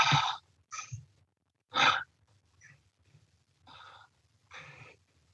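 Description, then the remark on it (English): A person breathes deliberately in and out: about six breathy, airy bursts in an uneven rhythm, the early ones loud and sharp, the later ones softer, with no talking. “I don't know if you can hear me breathing in, but if you breathe in, let's say you're out for a jog and you're breathing in and breathing out, it sounds like Yahweh.”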